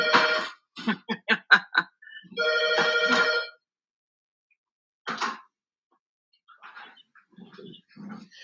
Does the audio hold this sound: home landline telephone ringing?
yes